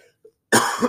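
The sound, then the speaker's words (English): A single loud, harsh cough erupts after a brief quiet pause, with a faint throat sound just before it. “I will cough for some reason.”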